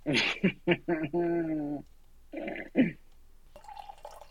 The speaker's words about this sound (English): Are you pouring wine? Yeah, right in front of the microphone so you can hear it because this is a quality fucking microphone.